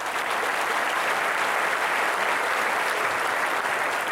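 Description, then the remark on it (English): Steady applause from a group fills the whole stretch, a dense, even patter of many hands clapping at a constant moderate loudness with no voices standing out. “Applause”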